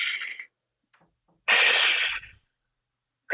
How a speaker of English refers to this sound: People don't realize how important not just the normal everyday breathing that we do, but a conscious taking of the deep breath. Even just hearing you do that, I instantly take a giant breath.